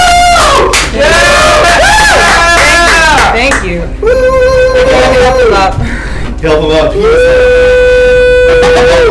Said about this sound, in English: I was like, the crowd just goes fucking nuts.